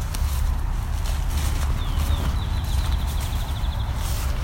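A red-winged blackbird sings a brief, high sliding note and then a long, thin buzzy trill of rapid repeated notes. The song is faint against a heavy, steady low rumble.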